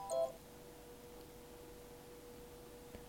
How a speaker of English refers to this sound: what was that beeping noise? I think I put a Hot Pocket in the microwave and left it in there.